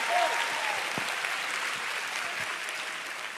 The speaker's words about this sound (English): I thought you'd be clapping faster and louder.